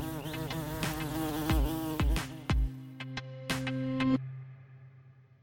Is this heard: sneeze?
no